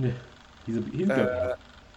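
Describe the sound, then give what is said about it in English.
A single wavering goat bleat sounds fairly loud, trembling for about a second before cutting off into a quiet background hum. “meet the goat.”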